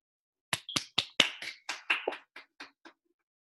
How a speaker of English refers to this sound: I know I'm clapping alone.